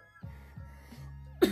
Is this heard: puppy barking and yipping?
no